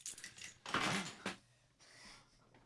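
A bunch of keys is rattled and shaken in a few quick jingling bursts, the loudest in the middle, then a softer shake trailing off, fairly quiet, with no voices.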